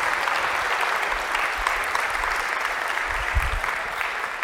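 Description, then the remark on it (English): A church audience applauds the music team and staff steadily for several seconds, a dense wash of many hands clapping at a constant loudness with no voices standing out. “Guys, they've worked hard for this weekend, and I just want to, can we give them a round of applause, please, for all of them?”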